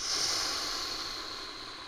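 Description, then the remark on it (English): A single long, breathy sniff drawn in through the nose, steady and airy for about two seconds and fading slightly at the end, with no talking. “Fuck, I'm gonna put my nose up on that fucking horn to get a good sniff.”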